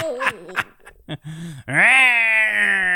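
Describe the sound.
A human voice imitates a falling cat, starting with a few short wavering cries and then swooping up into one long, loud, sustained yowl that holds its pitch until the end.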